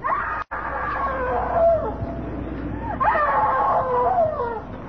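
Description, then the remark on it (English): A woman screams in long, wavering, high-pitched wails that rise and fall in pitch, nearly continuous and fairly loud, with one brief break near the start. “Why didn't you scream before? Why didn't you scream so Daddy could hear you?”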